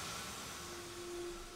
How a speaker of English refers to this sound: Norco's a town of about 3,500 people and home to the major Shell oil refinery that you hear now.